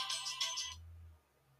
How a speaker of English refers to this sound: And, sorry about that, folks. My phone was ringing.